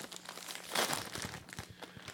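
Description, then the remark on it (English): A bag of Flaming Hot Cheetos crinkles and rustles as it is pulled open, with one louder crackling tear near the middle among a run of sharp, papery crunches. “Crack them open, bro.”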